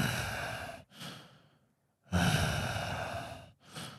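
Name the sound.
imitated heavy breathing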